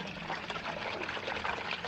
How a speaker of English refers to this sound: I mean, listen to the sounds of that water.